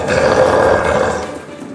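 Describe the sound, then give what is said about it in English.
A single raspy, growling roar made by a human voice mimicking an undead monster, loud, held for nearly two seconds before tapering off slightly. “And it lets out another roar that kind of like sounds like a raspy.”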